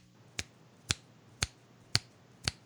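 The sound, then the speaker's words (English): Five crisp finger snaps in a steady, even rhythm, each a sharp bright click about half a second apart, with no talking in between. “Yes, I'm snapping my fingers with you, sir.”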